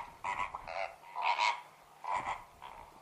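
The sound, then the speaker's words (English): A flock of flamingos gives nasal, goose-like honking calls, about five bursts in quick irregular succession, some overlapping. The calls are moderately loud, with no talking. “Just looking at this wading bird with extra long legs and neck, you might think it's related to other birds with those features.”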